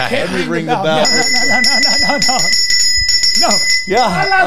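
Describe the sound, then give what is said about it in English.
A cast iron Japanese bell is struck once and rings on with a bright, steady, shimmering tone that lingers for several seconds while people keep talking over it. “That is keep a cast iron Japanese belt, which I spent $400 on.”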